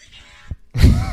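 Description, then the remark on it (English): A fart sound effect at normal speed: a soft thump, a brief pause, then a loud, low, blustery burst with a raspy buzz that lasts about half a second. “The fart sounds so much more satisfying.”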